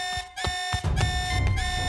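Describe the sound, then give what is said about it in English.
A loud electronic alert alarm blares continuously through a station, a harsh sustained tone punctuated by pulsing bursts, insistent, with no voices. “My eyes shot open as the alert blared through the station.”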